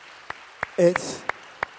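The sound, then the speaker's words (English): Rhythmic clapping, about five sharp claps evenly spaced roughly a third of a second apart, with a brief voiced shout and a burst of hiss in the middle. “Clap for that.”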